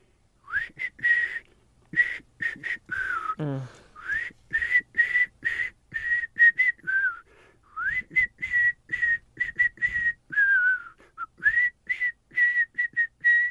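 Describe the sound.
A caller from Temple City on a morning radio show whistles a pop song melody, a steady run of short, clear high notes in a bouncing rhythm with occasional sliding pitch bends between phrases.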